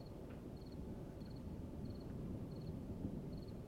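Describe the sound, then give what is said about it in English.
Steady, dense rain hiss with a deep rumbling undertone, while a faint high-pitched chirp repeats in short double pulses roughly every two-thirds of a second, like an insect or frog calling. “The rain anesthetizes my brain, and I can't keep my eyes open.”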